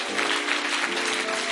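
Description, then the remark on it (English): A crowd claps for themselves, a dense, continuous wash of many hands applauding at once, with a faint murmur of voices underneath throughout. “Clap for yourselves.”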